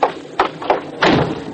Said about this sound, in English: First, I'll close the door.